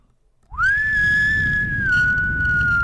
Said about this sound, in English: I just wanted to put the whistle in. I wanted to put the whistle in there.